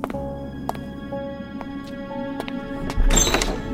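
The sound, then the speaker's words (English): A pair of front doors is tossed open, ending in a loud thunk and a brief rush of noise, after a few light clicks and knocks over a low steady hum. “And after tossing them open, he looked back at me.”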